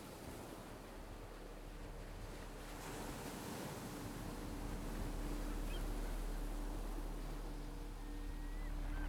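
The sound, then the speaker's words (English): Waves wash steadily onto a stony Pacific shore while wind blows across the microphone, forming a continuous roar of surf that swells slightly toward the end, with no voices. “You awake on a stony shore, hands digging into the damp sand as you pull yourself up.”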